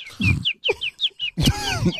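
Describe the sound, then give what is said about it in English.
A quick series of bright, high-pitched bird chirps repeats in a steady rhythm, clear, with a low clucking undertone and a busier burst of twittering near the end. “Wow, we have a new friend in the nest.”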